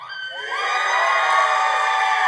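A crowd cheers and shouts, starting modestly and swelling after half a second into a loud, sustained roar of high-pitched whoops and yells with no distinct words.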